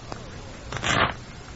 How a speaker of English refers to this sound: Oh, here are the cards. Will these do, or must you have a new deck? Well, these will do very nicely. Shuffle them, would you please,